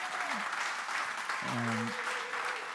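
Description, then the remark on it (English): A crowd claps in a sustained round of applause, a dense steady patter of many hands, with a brief voice or cheer rising through the middle of it. “give a round of applause, please.”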